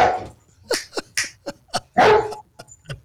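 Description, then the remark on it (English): Camaro, an office German Shepherd, barks at a man walking into the office in a loud, rapid string of about eight sharp, harsh barks at an uneven rhythm, with one longer, rougher bark in the middle and no voices. “Oh, and the other thing, every survey company should have an office German Shepherd.”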